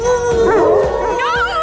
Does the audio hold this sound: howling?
yes